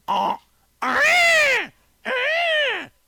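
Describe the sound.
A person imitates a peacock: a short opening yelp, then two long, loud, nasal wails that each rise and sag in pitch, with a brief pause between them.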